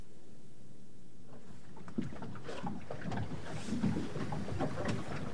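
A boat moving across open water, with a steady low rumble and wind noise, then splashing and slapping water picking up after a couple of seconds. No one speaks.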